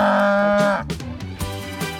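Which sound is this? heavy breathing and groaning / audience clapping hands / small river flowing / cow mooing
cow mooing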